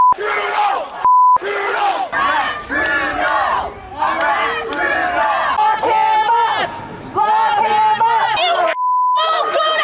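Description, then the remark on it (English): Anti-vaccine protesters yell and shout angrily at Trudeau on the campaign trail, over one another in loud, overlapping bursts, with a few steady high bleep tones cutting in where swearing is censored. “Anti-vaccine protesters yelling and swearing.”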